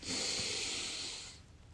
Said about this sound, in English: So I think it's funny because here I am gulping in air with my yawns. So taking in oxygen.